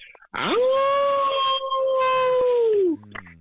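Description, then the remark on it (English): A person imitates a wolf howl, a single sustained tone that rises sharply at the start, holds steady for about two and a half seconds, then drops off at the end. Loud. “You probably guessed wolf, but it's really howl.”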